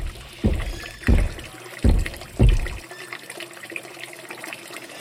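Water runs steadily from a water fountain at a gym into a Hydro Flask bottle, with four rhythmic gushing surges in the first few seconds before settling into a softer, continuous trickle. Moderately loud, no voices.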